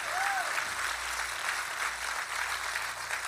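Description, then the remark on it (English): Steady, dense applause from a large audience at True North, clapping for everybody who said the prayer to become a Christian, a continuous wash of many hands clapping at an even loudness for a few seconds, with no individual voices standing out. “Come on, True North, clap for everybody that said that prayer.”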